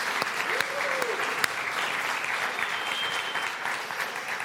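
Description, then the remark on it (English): An audience bursts into sustained applause for the speaker's parents, visiting from KZN, a dense, steady wash of clapping that holds at an even, fairly loud level for several seconds, with a few sharper individual claps standing out. “I always like to just honor them, and I'd like you to honor them because I just get to spoil them with some applause every time they pitch up.”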